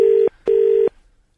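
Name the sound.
telephone dialing tones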